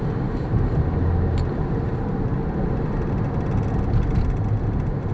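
A car driving on a highway, heard as a steady, loud low roar of engine and road noise that holds constant throughout with no voices.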